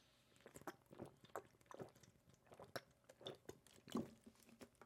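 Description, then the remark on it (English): Quiet mouth sounds of someone sipping water, with soft wet slurps and gulps repeating every second or so, a slightly louder swallow near the end, and no talking. “And before I do that, let me get a little bit of water, because when you talk for so long, bro, your throat just starts hurting.”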